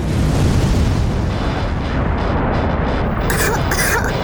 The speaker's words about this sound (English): Nova's eyes began to glow as a radiant beam came screaming from Nova's palm. The blast barely missed Balthazar, but he and Kira were caught up in part of the explosion.